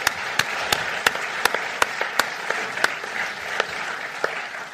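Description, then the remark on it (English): An audience at the Barbican applauds a panel in a steady round of clapping, with a few louder, sharper claps standing out over a dense wash of hands from the room. “So can give the panel a quick round of applause, please.”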